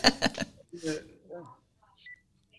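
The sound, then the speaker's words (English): A phone rings with a quick burst of repeated electronic pulses, followed by a few faint, short beeps, while muffled voices murmur underneath. “We can wait till it stops ringing if you want.”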